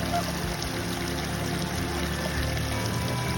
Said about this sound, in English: And then we cross over the most picturesque mountain brook.